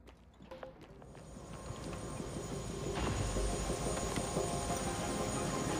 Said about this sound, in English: Morning, Mr. Yu. Heard there's a chopper on the roof. Must be for you.